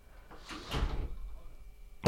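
A gate swings with a brief scraping rush of noise, followed moments later by a sharp latch-like clack. Both sounds are fairly faint.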